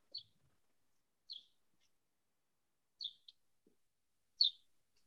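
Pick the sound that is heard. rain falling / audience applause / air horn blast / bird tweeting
bird tweeting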